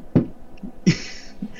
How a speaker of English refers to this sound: You gonna hear this? Knock on wood.